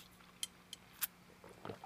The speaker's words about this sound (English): Give me a second for let me drink some water real quick.